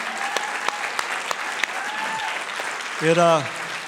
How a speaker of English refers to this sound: I want you to stand on your feet. I want you to give him a round of applause in this house for our founding pastor.